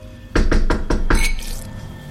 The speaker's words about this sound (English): A sharp rapping on the window above the sink caused him to stumble, sloshing the wine onto the counter.